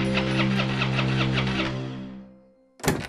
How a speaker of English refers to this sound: And of course, the car wouldn't start.